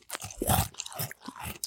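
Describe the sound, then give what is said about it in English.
Crisp crunching of someone chewing a mouthful of spicy roasted crickets, with several irregular bites and grinding chews over a couple of seconds and no talking. “They sound crickety when you chew them.”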